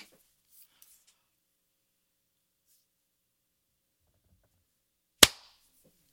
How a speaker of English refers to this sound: All right, should we clap at the 30-second mark? Yes.